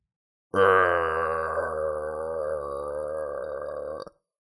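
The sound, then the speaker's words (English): A person imitates a dog on a plane growling at the seat neighbour, a low, rough, steady rumble held for about three and a half seconds, fairly loud, with no other sounds around it. “I can just feel that dog sitting next to me on the plane, breathing on me and growling at me.”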